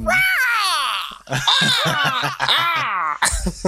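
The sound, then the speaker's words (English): A person imitates a bald eagle's cry as a sound effect during a promo, with loud, shrill, wavering screeches that slide downward in pitch, repeated in about three drawn-out bursts with brief gaps between them. “Can you just like add like a bald eagle caw during it?”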